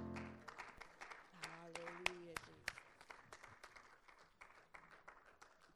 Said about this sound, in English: There is none like you, Jesus. Let's put our hands together in an applause.